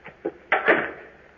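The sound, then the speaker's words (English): An outer door opening: two light clicks, like a latch, then a louder scraping swing that rises sharply and fades over about half a second. No one speaks. “Then here goes the outer door.”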